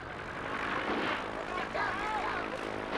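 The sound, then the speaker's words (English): The propeller engine of an airplane with no wings drones steadily and loudly as the plane is driven along the ground without taking off, with muffled voices faintly underneath. “This was fun, to drive an airplane without wings and not leaving the ground.”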